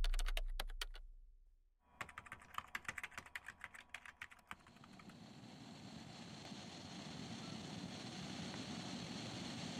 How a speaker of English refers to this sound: Look, Doc, I need you to tell me I'm crazy, that I'm paranoid or seeing or hearing things because, Doc, I hear typing when I try to go to bed.